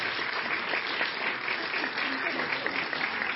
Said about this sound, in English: Let's give them a round of applause, shall we?